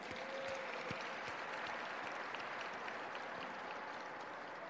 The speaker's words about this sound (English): Let's give them all a round of applause.